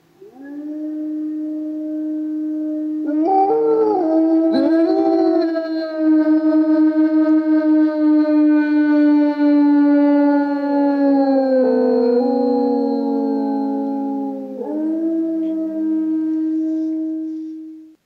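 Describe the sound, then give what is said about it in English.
A coyote howls in long, sustained, wavering notes that bend up and down in pitch, carrying on loudly for nearly twenty seconds with no talking. “Coyote is howling wisdom in the beauty of your canyon.”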